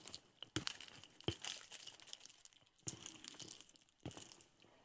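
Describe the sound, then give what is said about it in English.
A chocolate bar wrapper is torn and crinkled open, with several sharp ripping bursts between softer rustling, no talking. “Let me open this... pencil bar over here.”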